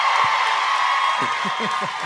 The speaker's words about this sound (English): I don't know why y'all clapping. None of y'all get to come.